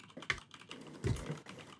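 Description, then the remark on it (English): Quick, uneven clicks of computer keyboard keys being typed on, fairly quiet, with a slightly heavier cluster of taps near the middle and no voices. “Those are my keys clicking.”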